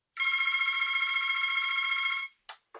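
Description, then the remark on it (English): A telephone rings once: a bright, buzzing electronic trill held for about two seconds, then two short blips after it stops. No voices are heard. “And with this deluge of news on COVID-19, I called him up the other day for help.”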